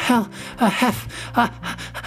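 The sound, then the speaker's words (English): A voice gasps and pants heavily, about four quick breathy bursts in a row, fairly loud, like someone acting out being badly out of breath. “Said Piglet, breathing so hard that he could hardly speak”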